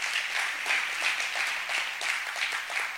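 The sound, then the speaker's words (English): A church crowd applauds steadily, many hands clapping at once in a dense, bright, even patter that holds at a constant moderate level for the whole stretch, with no voices over it. “And so can we honor them and give them a hand clap as well?”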